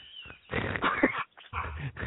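A dog sitting on a couch vocalizes in rough, growly grunting bursts, one long sound followed by a shorter one after a brief pause, with no talking.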